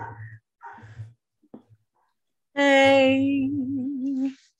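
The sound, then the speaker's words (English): Dogs react excitedly to an Amazon delivery: a couple of short, muffled barks, followed by a loud, sustained howling whine that wavers in pitch before cutting off; no talking. “Amazon means the dogs go crazy.”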